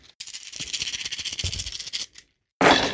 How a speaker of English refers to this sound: So I will be rolling a total of 22 dice, and I already have 5 auto successes. Let's see how this works.